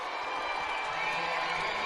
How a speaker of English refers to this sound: And it's 61-49, Wyoming, and the crowd coming alive once again here in Laramie.